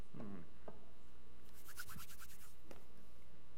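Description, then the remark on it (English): Quiet handling noises from a bottle of Frank's hot sauce: a few short scratchy rubs and light clicks of the bottle being picked up and turned, with a faint background hum. “Is that Frank's? It is! Ding, ding, ding, ding! He puts it on everything, everyone.”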